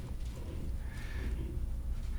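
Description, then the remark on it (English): The hooves of a donkey carrying a rider clip-clop at a steady walking pace over a low, rumbling outdoor background, with a brief higher tone rising faintly midway through. “He sits on the donkey and he is coming.”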